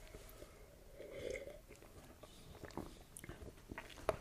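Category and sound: food or drink, sipping a drink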